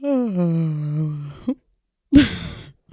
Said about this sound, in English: Yeah, I just yawned into the mic because it's Monday.